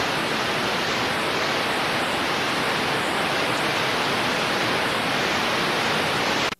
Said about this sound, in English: We're still in kind of the peak impact phase right now as we have bands of heavy rain that are still moving in off the Atlantic and just continuing to spin in that counterclockwise fashion.